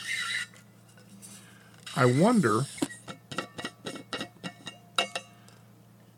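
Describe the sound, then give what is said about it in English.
A short burst of hiss gives way to a squeaky thermos letting out a high, wavering squeal, followed by a string of light clicks and clinks as coffee is poured; a voice speaks briefly. “And so I wonder, pour some coffee while I'm talking. Here's the squeaky thermos.”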